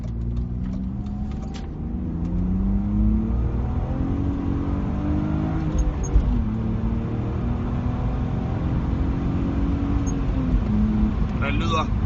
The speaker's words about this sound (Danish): Soltag, det er en 6-cylinder, som lyder ganske godt.